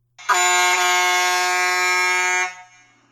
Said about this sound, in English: The Mother Trucker horn.